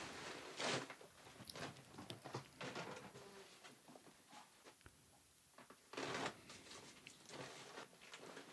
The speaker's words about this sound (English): And then they love the sound of me opening the bag of food, brought a new bag of food down. Here we go.